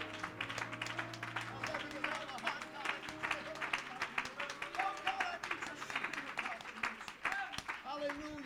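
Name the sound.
audience clapping hands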